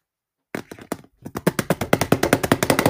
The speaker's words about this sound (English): That was me typing, by the way.